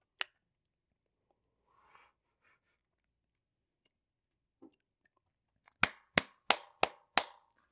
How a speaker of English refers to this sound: I'll clap again.